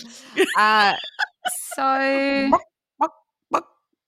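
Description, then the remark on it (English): A person imitates a chicken with drawn-out, strained "bagawk" clucks: two long harmonic squawks, then a few short, choppy clucks trailing off. The vocal imitation is loud and alone. “That's a pretty good chicken.”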